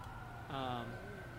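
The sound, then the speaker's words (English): Several emergency vehicle sirens wail outside, a steady sustained tone joined halfway through by a brighter, louder siren rising over the background hum. “Sorry, that's a lot of sirens.”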